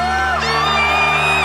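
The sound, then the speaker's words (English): A loud, sustained whoop of voices rings out over a steady, humming backdrop, like an audience screaming and cheering in a single continuous burst. “If you're having a good time, somebody scream!”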